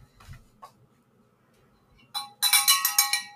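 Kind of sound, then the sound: signal or alarm, bell ringing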